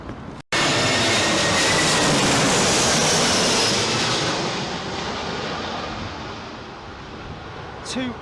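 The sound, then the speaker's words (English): A jet plane roars in loud through blustery Storm Eunice winds, a heavy sustained rush of engine noise and gusts that slowly eases as the aircraft touches down. “I mean, it's all pretty much the same throughout, but I think you can hear the joy in this man's voice at hearing this plane land.”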